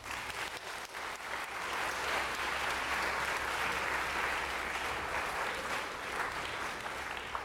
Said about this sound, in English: Can we get a round of applause for our winners?